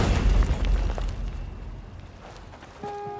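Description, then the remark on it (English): The Wright brothers' Flyer, flown by Wilbur, stalls and crashes into sand with a heavy, low, booming thud that rumbles and slowly fades over a couple of seconds. A faint steady tone rises near the end. “All Orville can do is watch as the plane stalls and plummets into the sand.”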